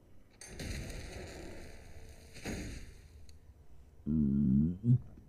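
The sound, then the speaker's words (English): A rumbling, crackling burst with a steady high whine fades out, then after a pause a loud, low, croaky burp wavers for about a second, ending in a short gulp. “That was a pretty good burp.”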